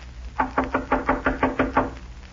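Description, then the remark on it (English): Eight sharp knocks rap on a wooden door at a ranch in a quick, steady rhythm, fairly loud, with no voices and a quiet background between the blows. “Ought to be somebody here, but I don't hear them coming to the door.”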